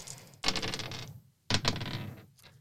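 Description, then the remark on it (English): Dice clatter across a tabletop in two separate rolls for a study roll in a tabletop role-playing game, each a quick rattling burst that tumbles and settles within about a second, with no one talking. “I saw Brendan touching dice.”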